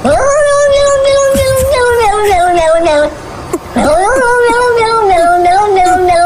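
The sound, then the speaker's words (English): A cat yowls loudly in protest, two long, wavering wails with a short break between them, the drawn-out cries almost sounding like 'no.' “Was that the cat that wanted that didn't want a bath?”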